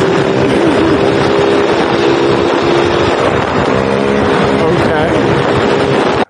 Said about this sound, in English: So any small Honda mini bike, you know, 10 or 12 inch wheels, that was kind of our thing. And so there's a video of me doing a wheelie that's the top right. Okay. And so that's what it is. Dear Lord on the highway.